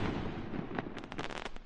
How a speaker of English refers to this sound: You can tell that's a big firework. That's satisfying.